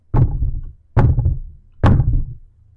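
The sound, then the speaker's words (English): Three heavy, booming thuds land at a slow, even pace, each one deep and resonant with a short decaying rumble, like a fist pounding hard on a solid door inside a house. “The pounding started again, this time without the white noise of the shower crowding my hearing. It was louder, and it erased any notion that I was alone in the house.”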